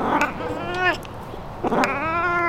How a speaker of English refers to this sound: he lives a building down from me, and he comes to my back door and does this really raspy meow to get me to come out and pet him.